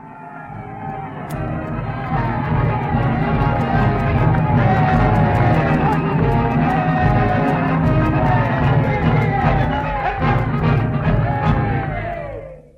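A large crowd cheers and shouts in a dense, continuous roar for about twelve seconds, loud, with a band playing underneath, at the dedication of a big new building in a town, before it tapers off at the end.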